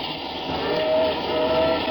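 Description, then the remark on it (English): A train rumbles loudly and steadily as it approaches a railroad crossing, and a steam whistle sounds partway through, a sustained tone over the continuous roar of the approaching engine. “If Burdick tries to beat that limiter to the crossing, he's crazy.”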